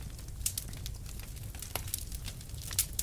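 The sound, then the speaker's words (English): A fire crackles with sparse, irregular pops and sharp snaps over a low, steady roar. The crackles stay fairly quiet, and no one speaks. “Fire crackling.”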